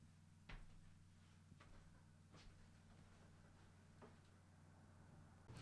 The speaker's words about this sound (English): We got people knocking on the door.